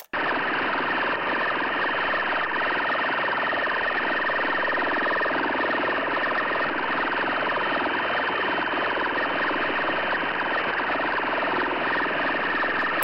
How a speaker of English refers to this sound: here's a sample from Chris's website of a warbler jammer in action, just so you can hear what that sounded like, the woo-woo that Forrest was talking about.